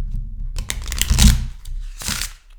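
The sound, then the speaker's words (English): A deck of quote cards being shuffled: a longer burst of rapid papery flicking and riffling, a short pause, then a second quicker shuffle, with no talking. “Shuffling these cards.”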